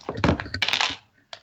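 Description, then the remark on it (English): Dice clatter across a hard surface in a quick, rattling burst of knocks lasting about a second, then a short pause and one final click as they settle. “Let's see if this dice works.”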